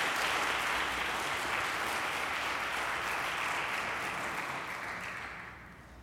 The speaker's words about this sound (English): so we can give him one more round of applause when he gets here.